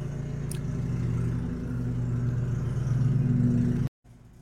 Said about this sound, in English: Okay, I'm back. I had to do a brief interruption waiting for that guy outside to finish mowing around here and move across the street.